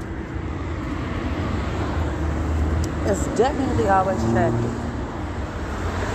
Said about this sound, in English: traffic. Always traffic.